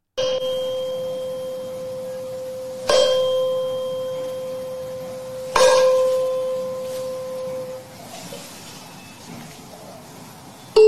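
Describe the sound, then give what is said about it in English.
A tuning fork is struck three times, each strike ringing out in a clear, sustained pure tone that slowly fades, setting a second, untouched tuning fork vibrating by resonance. Any light tapping of a ping pong ball bouncing off the second fork is too faint to pick out. “And we are going to see, even though they are not touching in any way, the second tuning fork is going to start vibrating and the ping pong ball is going to start bouncing off of the fork.”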